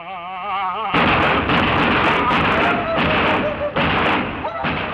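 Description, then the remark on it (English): A brief voice, then a dense, loud barrage of gunshots fires rapidly for several seconds, the bursts overlapping into a near-continuous roar with faint voices buried underneath. “And if you're only listening to our version of the podcast, then you're missing out on the Gunshot Edition sponsored by our wonderful sponsors over at the National Rifle Association.”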